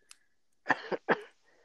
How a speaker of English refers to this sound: Sorry, I had a cough.